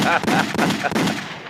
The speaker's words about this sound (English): Gunshots.